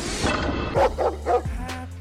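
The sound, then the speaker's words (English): A dog barks several times in quick succession, sharp, with a few short yips between the louder woofs against a faint background; a 'Lock Dog Tease' sound effect. “That's a Lock Dog Tease sound effect.”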